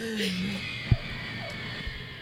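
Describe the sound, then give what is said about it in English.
An airplane touching down on the runway after a long flight: one dull, low thump breaks through a steady engine rumble and a faint high whine, followed by a softer bump a moment later. “Ooh, and that's the sound of us touching down.”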